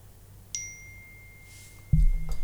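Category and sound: signal or alarm, phone call ringing tone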